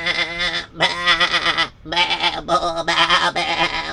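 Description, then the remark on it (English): A hungry goat, just let out after a night without food and jumping all over the place, bleats loudly and repeatedly, several wavering, nasal cries following one another with brief breaks between them. “And then when it came, and of course they opened the Arnakaitis and out sprung the goat, and it was pretty hungry because it didn't eat all night, and it was jumping all over the place.”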